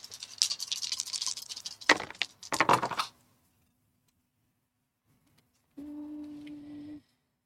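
Dice clatter and rattle across a hard tabletop for about three seconds, fairly loud, then stop; they are rolled for a stealth check in a tabletop role-playing game. After a quiet pause a short steady hum comes in.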